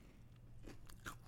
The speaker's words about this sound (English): That crunchy. That crunch is nice.